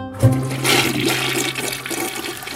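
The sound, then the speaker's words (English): A toilet flushes, starting with a sharp click of the handle and then a steady, loud rush of swirling water that keeps going to the end. “Up to 68% of the hormones in each dose of a birth control pill are flushed away.”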